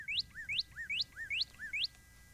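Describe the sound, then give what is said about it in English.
A cardinal sings a quick series of about five bright, rising whistled notes, each with a short slurred tail, repeated at a steady pace, clear and alone with no talking. “I was actually going to ask for the cardinal again.”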